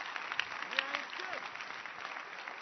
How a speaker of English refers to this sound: Clap your hands. Keep clapping. Beautiful.